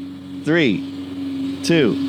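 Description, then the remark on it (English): Lawnmower engines drone in a steady, even hum throughout, while two short vocal bursts, swooping down in pitch, rise briefly over the running motors. “And cue the lawnmowers.”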